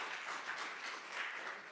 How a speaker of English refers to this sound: Yeah, that ought to make you clap.